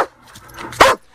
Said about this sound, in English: which one is the bark of the German Shepherd?